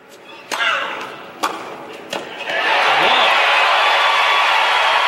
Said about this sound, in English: Now, as the set continues neck and neck, here's that first clip you heard, when Davenport hits a backhand winner down the line.